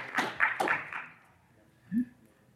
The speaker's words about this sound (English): Now you see why we have one of the top intern programs in the world. Yes, let's Justin. Give Justin another round of applause. That's fantastic.